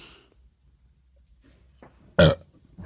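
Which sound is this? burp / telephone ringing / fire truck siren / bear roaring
burp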